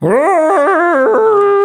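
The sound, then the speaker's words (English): A person imitates a vacuum cleaner with a loud, continuous whining hum. It rises in pitch at the start, then warbles up and down, sounding more like a howl than a machine. “That was the world's worst impression of a vacuum cleaner, by the way.”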